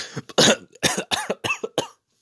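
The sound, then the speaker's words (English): A sudden fit of coughing after choking on saliva: six or seven harsh, raspy bursts in quick, uneven succession, fairly loud, then silence. “I swallowed my own saliva.”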